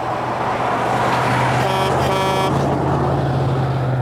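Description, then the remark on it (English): A semi-tractor trailer truck, one of two passing, rumbles past over steady road noise and a low engine drone, letting out two loud horn blasts, a short one then a longer one. “We got two semi-tractor trailers to drive through that pregnant pause.”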